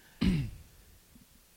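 A single sharp sneeze bursts out, short and explosive with a brief voiced tail, then fades into quiet background noise.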